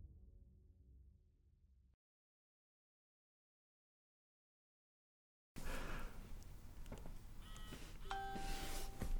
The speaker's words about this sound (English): Dad's phone goes off. Dad's phone goes off.